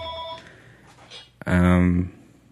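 A telephone rings once, a loud, buzzy tone lasting about half a second, preceded by fainter steady electronic tones and some low background noise.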